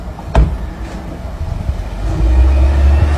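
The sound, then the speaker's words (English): A car pulls up onto the curb with a low engine rumble, a single sharp thud near the start, then the engine swells louder and deeper. No voices. “She basically pulls up on the curb.”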